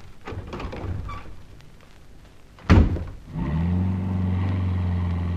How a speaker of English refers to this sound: Hurry! Hurry! I've got the car started.